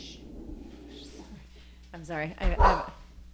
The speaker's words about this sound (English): we have a new foster dog supporting the show today. Protecting the house. And he's protecting us from a potential threat in a neighbor's yard.